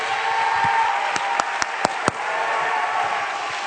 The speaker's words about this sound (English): Come on, clap your hands.